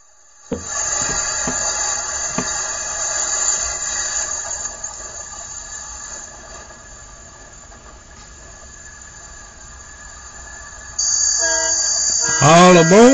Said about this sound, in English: All aboard, get aboard this train and ride.